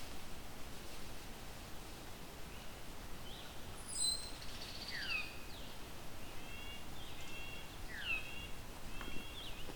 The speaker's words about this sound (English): Okay, I'm hearing a Veery, yo. And a Veery. The Veery sounding very sweet.